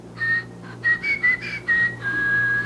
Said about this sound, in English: So he whistles with his tongue, and you can't tell he's whistling.